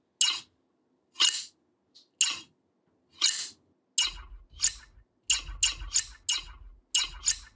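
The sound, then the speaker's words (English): Large 12-inch scissors snip crisply, a few slow, spaced cuts at first, then a quicker run of sharp snips with soft low thuds beneath them. No one speaks. “I bought both the 12-inch and the 10-inch, and then as well as a few other smaller scissors.”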